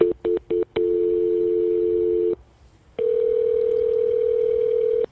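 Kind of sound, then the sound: signal or alarm, telephone dial tone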